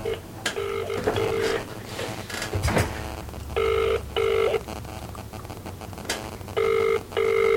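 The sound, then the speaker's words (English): A phone line rings out with a repeating double-burst ringback tone on an outgoing prank phone call, three pairs of trills separated by pauses, heard over a low background rumble and a brief thump. “Go on then, give him a ring.”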